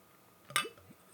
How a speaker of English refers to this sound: I don't know if you could hear that, but I was just clearing out the glass a little.